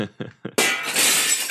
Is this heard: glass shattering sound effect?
yes